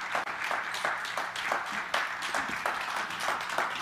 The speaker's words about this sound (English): And as they come, if you give them a warm Calvary Chapel round of applause at home or here and otherwise.